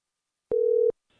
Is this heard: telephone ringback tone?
yes